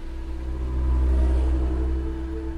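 A jeep engine rumbles low and steady, swelling as it revs and pulls away heading towards Lake Tanganyika, with a deep, continuous drone and no voices.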